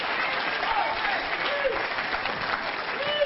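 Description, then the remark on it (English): An audience claps hands in worship of God, a dense, steady burst of applause that holds for several seconds, with faint voices and brief cries rising underneath the clapping. “I'm going to clap my hands, worship God, because I am going to run to win.”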